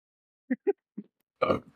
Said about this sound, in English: Oh my god, I hope that picked up. That was a nice fucking burp. I'm keeping the tradition alive. I've drank at least 30 Cokes.